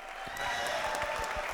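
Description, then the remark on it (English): Brief, light applause from a small group, a scattered patter of claps at steady loudness with a soft murmur of voices underneath. “But let's give them a little bit of claps.”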